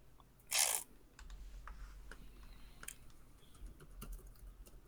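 Soft, irregular clicks of typing on a computer keyboard, with a brief louder rustle near the start, then scattered keystrokes over a low background hum. Nobody speaks.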